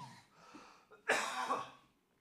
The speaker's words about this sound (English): You coughed right at 420. Did I? Yeah.